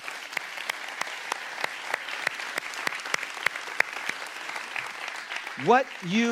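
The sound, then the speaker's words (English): Steady applause from a church audience for those serving in youth and children's ministry, a dense wash of clapping with sharper individual claps standing out, continuing evenly for several seconds before a voice begins speaking over it at the end. “Because you deserve a round of applause.”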